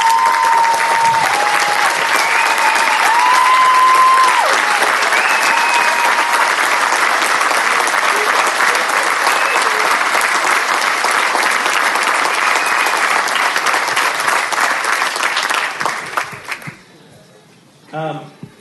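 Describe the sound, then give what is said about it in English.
A large audience applauds the veterans standing up in the house, in a steady, dense wash of clapping with a few cheers and whistles mixed in, holding loud for about fifteen seconds before quickly dying away. “How about all the veterans in the house stand up right now so we can give you a round of applause?”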